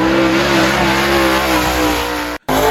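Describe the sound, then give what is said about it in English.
A race car engine revs loudly and steadily, its high droning tone holding and rising slightly, then cutting out abruptly for a split second before roaring back. “Oh, this is some race car shit.”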